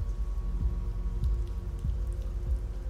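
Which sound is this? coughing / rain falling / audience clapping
rain falling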